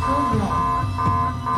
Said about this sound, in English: As soon as it opened, he grabbed the papers and envelopes that were inside, and suddenly, a loud alarm began to sound.